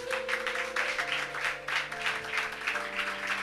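An audience applauds steadily for a few seconds, a dense wash of many hands clapping at once, while sustained keyboard chords hold underneath.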